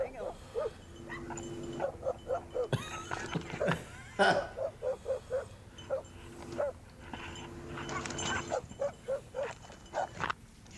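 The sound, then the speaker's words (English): A goat attacks a man, captured on a body cam: a chaotic scuffle of repeated short animal cries mixed with a man's strained shouts and yelps, bursting out in uneven rapid clusters. “Is a goat kicking his ass or what's going on here?”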